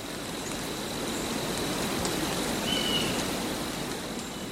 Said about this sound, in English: And side two was gentle rain in a pine forest.